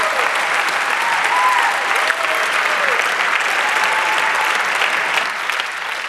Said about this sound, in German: Erstmal einen dicken Applaus, bitte. Ich denke, das haben die verdient.